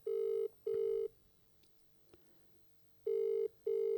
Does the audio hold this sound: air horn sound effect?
no